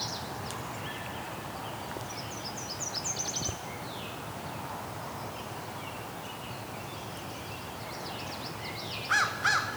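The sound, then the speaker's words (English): A belted kingfisher's dry, rapid rattle bursts out, with a second shorter burst near the end, over steady outdoor ambience and a crow cawing. “And a belted kingfisher.”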